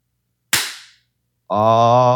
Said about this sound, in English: You want to give it a clappity clap? I do want to clap it up.